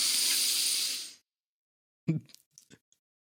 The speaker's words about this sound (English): And out. When I was breathing in, it sounded so fucking nasally.